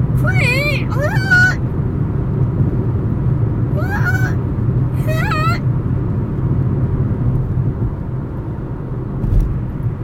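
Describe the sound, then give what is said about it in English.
A voice imitates screeching, dying cats in four short, wavering yowls, two quick ones, then a pause and two more, mimicking a sixth grader playing violin, over a steady low rumble that continues throughout. “It's like a herd of feral cats dying.”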